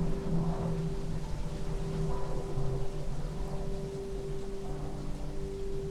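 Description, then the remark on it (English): A steady, droning rumble of an airplane passing overhead, a broad wash of engine noise with a constant low hum running through it, holding an even loudness throughout with no voices. “Notice the sound of the plane flying above.”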